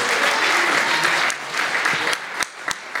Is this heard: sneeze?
no